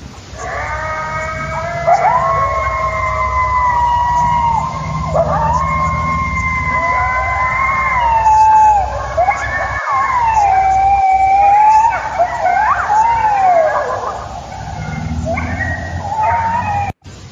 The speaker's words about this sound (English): But it almost feels like whatever made this sound triggered these coyotes to go crazy. So here, I'll go ahead and play it so you can hear and see what I'm talking about.